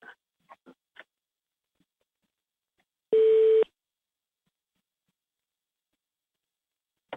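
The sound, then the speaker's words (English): A single loud, steady electronic beep on a telephone line signalling that somebody is on hold, a mid-pitched tone lasting about half a second, after a few faint short ticks and otherwise near silence. “Do you hear that beeping sound?”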